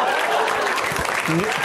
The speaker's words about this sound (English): Okay, thanks. Don't slow clap that.